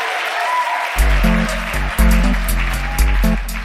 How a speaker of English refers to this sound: The choir cheered and clapped.